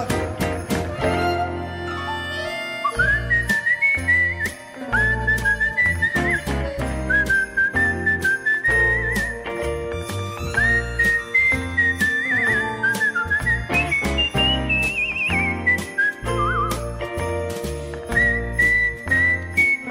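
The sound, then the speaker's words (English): A bright whistled melody carries a festive Christmas tune, rising and falling over steady instrumental backing with jingling bells, loud and continuous throughout, with no voices. “Whistling the Christmas tunes.”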